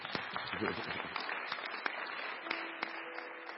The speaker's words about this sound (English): Oh, if you are clapping, clap.